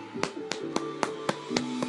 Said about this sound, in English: That is definitely a clap for that